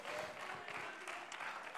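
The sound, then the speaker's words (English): An audience claps their hands unto the Lord in a steady, dense wash of applause, many overlapping claps blending into a continuous crackling roar at moderate loudness. “Oh, clap your hands unto the Lord now.”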